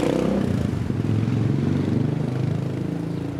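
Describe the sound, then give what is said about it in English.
Steady street traffic crawls past in Eggleston Square, Roxbury, Boston, on a sunny fall Saturday in the early afternoon: a continuous low engine drone with mid-range motor noise and occasional clatter, holding an even loudness for several seconds with no voices. “Traffic crawls by and the occasional car horn is heard as local residents make their way up and down”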